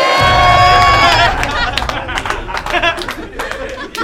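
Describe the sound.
A crowd cheers loudly for a performer after his round, with whoops and shouts, then the roar settles into steady applause and scattered claps with voices calling out underneath.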